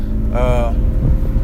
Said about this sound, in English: I'm heading for my car today, like good old times. But my car is a little bit loud. I'm still going to talk to you guys.